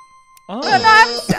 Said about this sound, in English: Oh. Yeah, I feel like sorry, wrong buzzer.